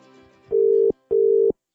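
Two steady, loud telephone tones, each held for under half a second with a short pause between, as a phone call is placed to Deirdre Verko and Andrew Digby of the National Kākāpō Recovery Team at the Department of Conservation, with no voices.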